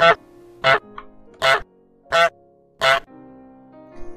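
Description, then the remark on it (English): A goose from the video game Untitled Goose Game honks five times in a steady, evenly spaced series, each call loud and brassy, with brief quiet gaps between and a faint sixth honk beginning at the end. “So, yeah, this is Untitled Goose Game.”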